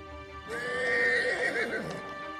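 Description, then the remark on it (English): A horse lets out one loud whinny lasting over a second, its shrill pitch quavering and dropping toward the end, over a faint steady background hum. “Our most hated enemy. Rain horse.”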